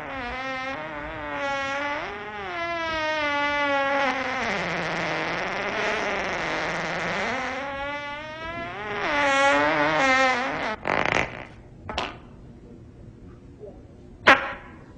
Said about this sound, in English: Was that a fart? I don't know. I can taste it on my tongue. Okay, I'll be honest with you. I did fart.